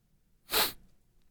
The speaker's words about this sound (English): Got the sniffles there. Huh? I'm getting a little bit of a cold or maybe some allergies.